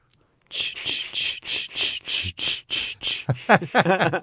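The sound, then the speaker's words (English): About eight bright, shrill cricket chirps repeat in a steady rhythm, fairly loud. They give way to a quicker, warbling voice-like trill at the end. “And the sound of the crickets.”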